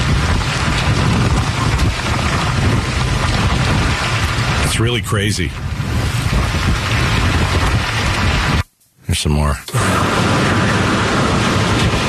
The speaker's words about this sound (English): All right. Let's hear some wind.